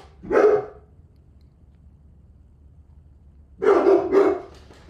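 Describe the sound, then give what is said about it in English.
Dogs bark in short, loud bursts, not at anything in particular: a single bark, a few seconds of quiet, then two or three quick barks in a row. No one speaks. “They're not even barking at anything.”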